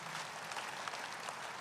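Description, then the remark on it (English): A crowd applauds for Jesus Christ, many hands clapping at once in a dense, even wash of sound that stays at a constant moderate level throughout, with no voices standing out. “Shall we clap for wonderful Jesus Christ?”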